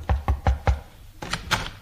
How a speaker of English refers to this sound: I knocked on the door.